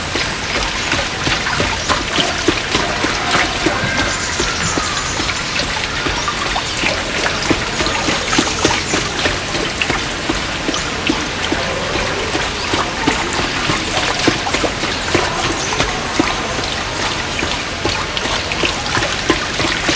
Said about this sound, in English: The lopsided turning of this water wheel makes it especially inviting to the ears.